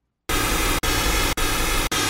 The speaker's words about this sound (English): I've done this test before in the past with pink noise, and I really like what it reveals. If I play the pink noise unaltered fast, you'll really hear them back to back. So here's pink noise unaltered fast.